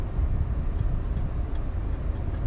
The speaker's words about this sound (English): Idlewild Drive. Big long train running right through the city. Stopping lots of cars, creating lots of traffic.